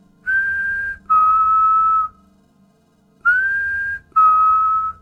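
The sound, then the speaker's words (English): A two-tone whistle, a higher note sliding into a slightly lower one, sounds clearly twice with a short pause between repeats. No one speaks. “All the way back in episode 39, we talked about the Whistler, a story of a man who throughout his life had heard the same two-tone whistle.”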